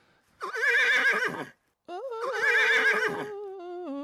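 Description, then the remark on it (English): Two loud horse whinnies, each a shrill quavering call lasting about a second, separated by a brief silence; the second trails off into softer wavering tones. “Listen to that. That's a horse.”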